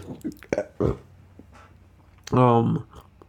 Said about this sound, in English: I'm going to fucking burp.